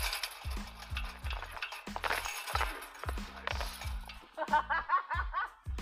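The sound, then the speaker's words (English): At Chase Disc Golf Course on September 1, 2018, a disc strikes disc golf basket chains, setting off a bright, rattling metallic jangle with repeated clinks, followed by a burst of laughter near the end. “Bang and Chain.”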